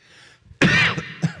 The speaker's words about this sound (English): That's what a cough sounds like on the microphone.